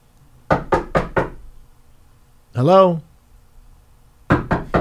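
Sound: knocking on a door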